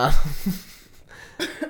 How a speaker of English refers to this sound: You made me choke on my tea.